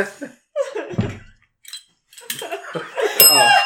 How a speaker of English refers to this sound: Want the bell?